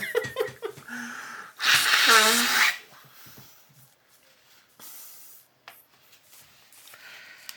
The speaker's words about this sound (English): All right, guys, I need to blow my nose. This Central Park is making me sneezy.